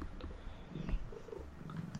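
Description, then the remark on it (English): A cat purrs in a steady, low rumbling drone while trying to eat a pair of headphones. The purr is quiet but continuous throughout, with a few faint soft clicks and no talking. “We need to have a soundboard. With baby coos and and cat purrs.”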